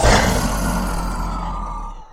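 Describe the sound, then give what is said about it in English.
A person's voice lets out a single loud, sustained roar for a character in a tabletop role-playing game, lasting about two seconds, rough and throaty, fading slightly toward the end, with no other talking. “As Thomas gets battered away by this dragon, he looks up to the sky again and gives a mighty roar.”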